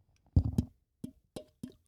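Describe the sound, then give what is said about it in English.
A small splash of Olipop fruit soda: a quick burst of watery plops, then three short, separate bubbly drips at a steady pace, fairly soft, with no talking. “Little splash. ASMR. No, like it literally worked.”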